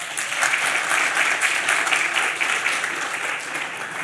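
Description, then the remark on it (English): An audience at an Auckland Conversations event claps steadily for several seconds for the sponsors, a dense, sustained patter of many hands at even loudness without any voices standing out. “Big round of applause for the sponsors.”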